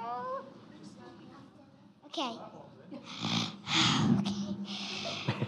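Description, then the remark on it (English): An audience member at a question session does loud, rasping heavy breathing, imitating a menacing mechanical respirator, with a few drawn-out breaths after some brief vocal sounds and snorts. “Some heavy breathing. Is he doing his Darth Vader?”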